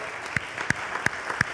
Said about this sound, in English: First, happy Mother's Day. Happy Mother's Day. Forget about that. Let's clap for our moms.